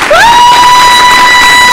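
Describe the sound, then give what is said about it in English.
A loud burst of crowd cheering and applause, with a sharp whistle sliding upward and then holding steady over the noise for under two seconds. “So, let's turn up with a big round of applause for our new and existing members and listeners.”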